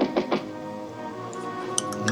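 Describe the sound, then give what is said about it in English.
Three quick, firm knocks on a door in a fast run, followed by a low steady hum with a few faint high clinks and no talking. “Who the fuck's at the door?”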